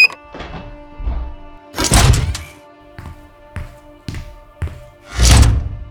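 A door thuds shut with two heavy slams, separated by a series of sharper mechanical clunks and clicks as it is locked with someone inside. No voices are heard.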